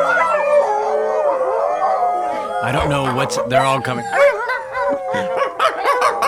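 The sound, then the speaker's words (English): About 14 dogs howl together in long, wavering tones, joined midway by a burst of sharp barks and yips, loud, while a person speaks briefly over the chorus. “There's now 14 dogs in here.”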